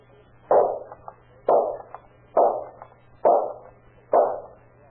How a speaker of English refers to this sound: Oh, boy, look at that. 5 shots and 5 bullseyes.